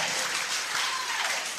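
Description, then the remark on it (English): An audience clapping together, a dense, steady wash of many hands that holds at an even, moderately loud level for the whole moment, with no voices standing out. “Those who are clapping, may the Lord remember you.”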